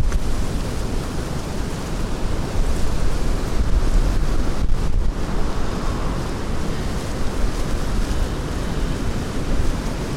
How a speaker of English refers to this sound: Anyway, it's a beautiful day. Except it's kind of windy, but I guess it doesn't make it not beautiful.